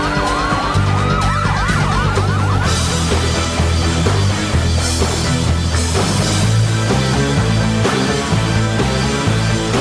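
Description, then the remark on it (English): A wailing police siren sweeps up and down over a loud, driving rock theme song for the first few seconds, then the heavy music carries on alone with pounding drums and bass. “Police siren, still there.”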